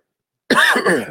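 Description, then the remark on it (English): A loud cough from a man with a cold comes in after a brief silence, two quick rasping bursts back to back, with a rough, throaty edge and no talking around it. “Get rid of his cough, man.”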